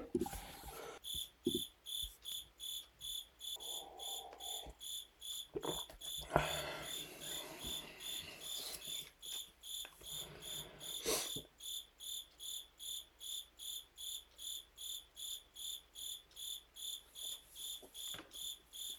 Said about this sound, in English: Oh, man, you can see the cricket on the waveform. Not cool.